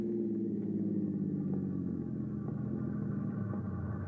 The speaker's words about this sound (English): As you near the train crossing, you hear it in the distance. The 704